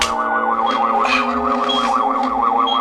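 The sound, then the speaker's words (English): A sonic screwdriver, used in an attempt to deactivate a device, whirs with a steady, loud electronic warble, its high pitch wobbling rapidly up and down for about three seconds with no voices over it. “Sonic screwdriver.”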